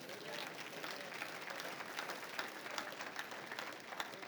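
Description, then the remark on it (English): A church audience gives a clap offering, many hands clapping in a dense, continuous patter that holds at an even, moderate level throughout, with no one speaking over it. “You got to give a clap offering for this.”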